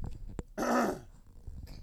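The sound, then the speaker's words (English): A baby boy in a diaper passes gas in one short, raspy burst lasting about half a second, loud, with quiet background noise before and after and no talking. “This boy just let it rip.”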